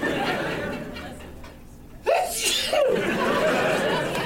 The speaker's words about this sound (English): But I suddenly got a serious allergy attack coming on. I'm going to sneeze, you guys.